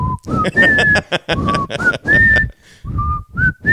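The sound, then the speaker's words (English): Someone whistles the bugle call Taps, a slow run of held notes that step up and down, somewhat breathy and uneven, with thumps and rustling underneath. “sorry, that was me trying to whistle taps.”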